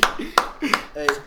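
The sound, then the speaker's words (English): Four sharp hand claps land at a steady, unhurried pace, each a crisp slap, while people's voices murmur underneath between them. “Oh, it's a clap.”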